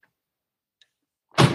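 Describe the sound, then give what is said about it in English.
Near silence, then a door closes with one sudden, loud thud at the very end, preceded by a faint click, after a visitor dropped off milk. “Someone's at the door.”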